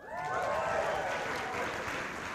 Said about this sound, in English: we say something good happened, you guys usually go, wow, that's good, and you can clap.